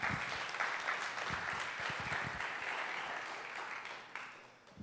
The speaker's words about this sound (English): Young kid stepping up, proclaiming his faith in the Lord, being bold enough to do that. That's amazing. Give him a round of applause, would you?